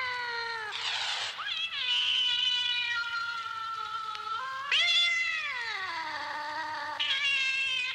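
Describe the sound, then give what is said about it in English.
A cat on a spooky sounds tape yowls in long, drawn-out cries, the pitch wavering and sliding downward, with a few brief breaks between fairly loud, continuous wails. No one speaks. “Cat.”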